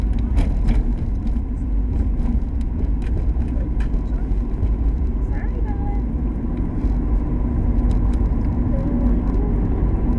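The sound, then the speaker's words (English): A heavy, continuous low rumble of a big truck passing by, steady and loud for the whole stretch, with faint clicks and scattered noises on top. “Big old thicken truck.”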